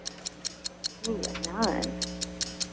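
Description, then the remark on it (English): A quiz countdown clock set to 60 seconds ticks in a steady, quick rhythm during a Halloween Scary Movie Week quiz, about a dozen crisp clicks, with a short vocal sound rising over the ticking midway through. “60 seconds on the clock.”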